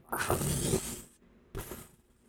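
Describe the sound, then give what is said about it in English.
Heavy doors at the back of an auction house: one creaks and swings open with a long grinding groan, then a second shorter thud-and-scrape follows a moment later. Fairly loud, with no voices. “So at this point in time, you hear the doors from behind.”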